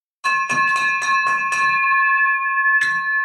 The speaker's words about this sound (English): Nice. That, my friend, is a victory bell for you